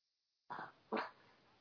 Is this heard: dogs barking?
yes